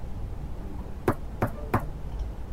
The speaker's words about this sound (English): When I get up there, I knock politely.